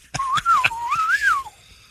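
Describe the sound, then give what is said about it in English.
A wavering, high whistling tone of wind feedback rises and dips for over a second, broken by several sharp pops, then fades out. “Getting a little feedback here every time the wind blows.”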